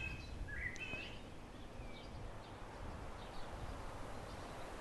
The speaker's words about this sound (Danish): Her lugter jord og mug. Jeg sidder i vejkanten. Solsorte og fasaner og biler.